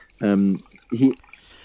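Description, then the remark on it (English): Liquid pouring from a wine box: two short gurgling glugs, each lasting under half a second, with a brief pause between them. “Hoping someone's pouring a drink. I really hope that's the box of wine that you're opening”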